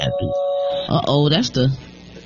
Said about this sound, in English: That's why that doorbell ringing. I see now.